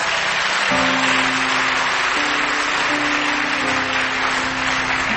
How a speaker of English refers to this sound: Give the Lord a mighty clap of hands.